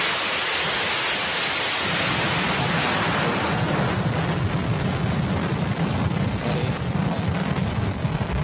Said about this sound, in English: Go for launch. Stage 2, pressing for flight. T-minus 20. Stage 1, pressing for flight. T-minus 10, 9, 8, 7, 6, 5, 4, 3, 2, 1, 0. Liftoff of Falcon 9.